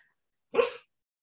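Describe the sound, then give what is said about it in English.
A female dog lets out a single short, muffled bark in her sleep while dreaming, fairly soft, with silence before and after. “Can you hear my dog barking in the background? She's having a dream.”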